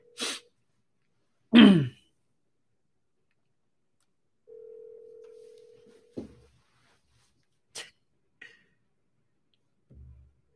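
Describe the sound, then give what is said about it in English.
A single steady ringback tone from an outgoing phone call to a seller, who does not pick up, hums for about a second and a half, surrounded by sharp bursts like a sneeze or cough and scattered clicks and handling noises. “Seller's not picking up the phone.”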